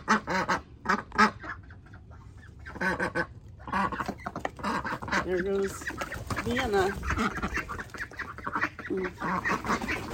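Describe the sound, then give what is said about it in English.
A flock of ducks quacks loudly and repeatedly in overlapping bursts as they file out of their duck house as it is opened, with a person talking briefly over the raucous, nasal calls. “I'm opening up the duck house, and as I get out of their way, they see the dog out there.”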